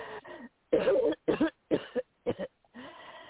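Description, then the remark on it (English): A person coughs repeatedly, a run of five or six harsh, hacking bursts separated by short irregular pauses, with a softer, throaty cough trailing off at the end. “you're going to be coughing for a good bit now, all right?”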